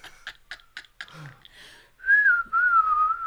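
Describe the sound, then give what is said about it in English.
A son whistles a tune in the background: a quick run of short, clipped notes, then a longer sustained note that bends and slides in pitch. The whistling is clear, with no talking. “with my son whistling in the background”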